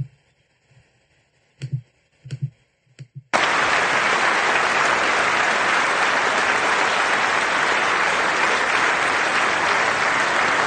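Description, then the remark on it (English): After a few seconds of near quiet with some soft thumps, loud audience applause bursts in abruptly and continues steadily as a dense, even wash of clapping to the end. “A few of them did actually clap for this, I guess.”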